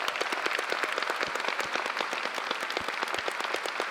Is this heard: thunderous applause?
yes